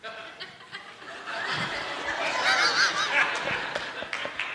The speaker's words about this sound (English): This is Bella. Bella the guinea pig.